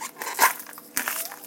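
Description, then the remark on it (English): Squeaky, crackly peeling of the outermost layer from an onion half, with a bright squeak near the start and a second burst of crinkly rustling midway, no voices. “Boy, that's squeaky, isn't it? So that comes off.”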